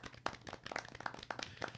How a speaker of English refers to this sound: casts Minor Illusion to make like a golf clap sound surrounding for Scotch's excellent KO